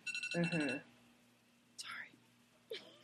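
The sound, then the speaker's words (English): A phone alarm chimes briefly, a bright, high-pitched electronic tone with a buzzy edge lasting under a second, followed by quiet, breathy whisper-like sounds against a low hum. “Is there, I was missing, is there, sorry, was it there an alarm for something?”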